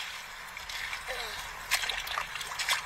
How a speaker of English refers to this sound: I went 7 pounds, huh? I knew I was going to get one today, folks. Yes, sir. Let's put this beauty back in the water. My personal best. I hope you grow even bigger, baby.